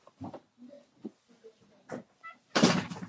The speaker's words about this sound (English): Close the door.